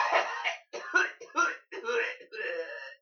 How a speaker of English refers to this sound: only got a few steps when he doubled over, coughing.